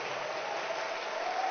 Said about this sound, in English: Oh, clap your hands for Lady Pastor Marian.